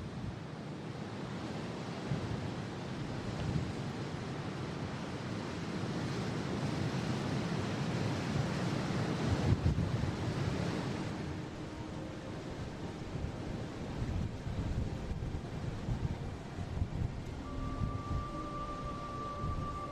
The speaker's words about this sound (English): Anyway, here's a track in the middle of the Saddle with the ocean either side and very strong winds blowing between this narrow gap.